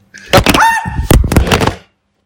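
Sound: microphone knocked over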